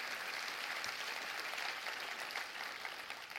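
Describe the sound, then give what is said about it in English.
A crowd claps their hands for God in a steady, dense wash of applause that holds an even loudness throughout, with no voices standing out above it. “Can you clap your hands for a God that will do that for you?”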